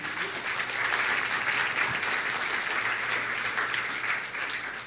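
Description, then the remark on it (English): An audience at a church in Corvallis applauds a woman who has just spoken, in a steady, dense round of clapping that holds at an even, fairly loud level for about five seconds without fading out. “Would you give her a round of applause?”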